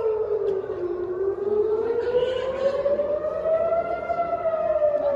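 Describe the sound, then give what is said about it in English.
A civil defense air raid siren in Tel Aviv wails steadily, its pitch slowly dipping and then rising in a long, sweeping tone that carries loudly, with no voices heard. “Sirens there from Tel Aviv as the hell continues this past week, now 15 days after October 7th,”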